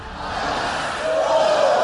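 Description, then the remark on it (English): A large crowd in Germany cheers and shouts as a domino run starts toppling, a loud, continuous roar, with one sustained high-pitched yell rising above the din in the second half. “Dominoes have started. The crowd going wild.”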